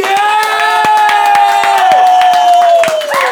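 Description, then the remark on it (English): At the live pub show Off the Rails Live, a crowd claps and cheers loudly and steadily for the co-host, scattered sharp hand claps beneath sustained high-pitched whoops and yells, with no pause for the whole stretch. “Round of applause for my co-host”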